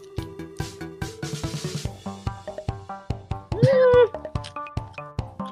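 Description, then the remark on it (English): A cat, Mikey, lets out one loud, drawn-out meow near the end, rising then falling in pitch, over a steady plucky, rhythmic musical backing, while being given Vegemite. “Vegemite kitty loves it.”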